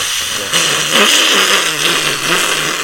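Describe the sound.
A voice imitates a screaming coffee milk steamer, as heard when someone makes a coffee in a bar: a loud, steady, airy hiss with a shrill edge that holds for about three seconds, wavering slightly in intensity, with no other talk.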